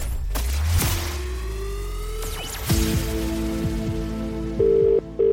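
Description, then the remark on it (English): Near the end, a steady electronic telephone ringing tone sounds once, then starts again, following a burst of whooshing, swooping sound effects, as presenter Sarah Jane Crawford calls an entrant about the £1 million cash register contest. No one speaks. “One ring. Two rings.”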